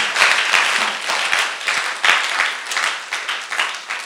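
An audience at a church service applauds as a clap offering, many hands clapping together in a dense, continuous patter at moderate loudness for several seconds with no voices above it.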